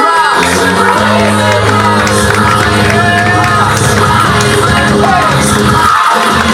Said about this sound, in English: Applaud all you want, I'll make more.